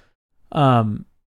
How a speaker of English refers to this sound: I got a yawn here.